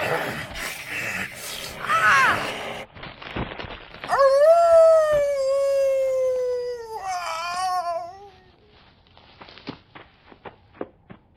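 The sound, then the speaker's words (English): A werewolf fighting a vampire lets out a long, loud, wavering howl that slowly drops in pitch, following a burst of snarling, scuffling fight noise, then trailing off into a few scattered taps and footsteps. “Vampires and werewolves fighting?”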